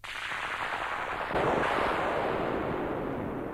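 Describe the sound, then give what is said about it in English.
Thunder following a flash of lightning rolls as a steady, noisy rumble, swelling louder partway through and holding there without a break for several seconds. No voices are heard. “A thunderstorm may come on.”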